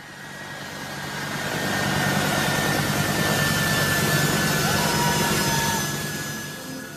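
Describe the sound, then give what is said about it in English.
An American military jet takes off with a loud, broad engine roar and a steady high whine, swelling within a couple of seconds, holding strong, then easing off toward the end, as hundreds of people run alongside it and some cling to it. “I'm watching a video of an American military jet taking off.”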